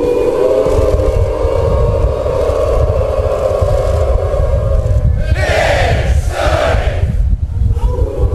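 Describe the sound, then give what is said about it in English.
A huge crowd, led by Frank Broyles, chants the University of Arkansas Razorbacks hog call, yelling "Woo pig suey": a long, rising, sustained collective wail for several seconds, then two loud shouted bursts, all over a thick, roaring crowd rumble. “And there is a video of him leading a crowd in the Razorbacks chant.”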